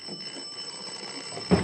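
A doorbell rings on without a break as a thumb is held on the button, a steady, shrill, high-pitched ringing that holds for the whole moment, with a brief heavier thump breaking in just before it ends.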